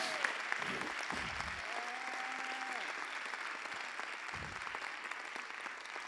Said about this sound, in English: Come on, somebody give God a hand clap of praise.